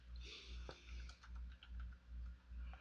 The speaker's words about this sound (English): I started typing on the wrong thing. I started typing on the wrong thing. Hold on.